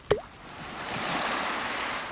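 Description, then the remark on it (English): A single soft plop as a long, finger-like stone is lobbed into lake water near the start, short, followed by a steady wash of lapping water and faint outdoor ambience. “Better yet, there are long finger-like stones I lob in without a splash, just a thoop.”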